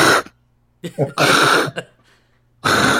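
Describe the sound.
A person mimics someone's snoring, which is not constant, with three rough, throaty bursts separated by short pauses, each harsh and gravelly, ending with another forceful snort-like rasp.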